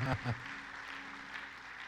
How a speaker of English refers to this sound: Clap your hands. Praise God.